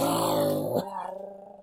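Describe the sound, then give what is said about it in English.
A person gives a loud, rough imitation of an animal roar heard in a subway in a film: one growling burst under a second long, which breaks off into a quieter, wavering tail. “But then we hear a roar.”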